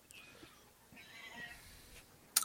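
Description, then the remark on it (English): A faint, drawn-out meow from a cat named Whiskey rises and wavers in the background, quiet with no talking, followed by a brief sharp burst of noise at the very end. “Is that Blob meowing in the back?”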